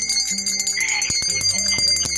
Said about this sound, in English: Jeez, we need to ring a bell.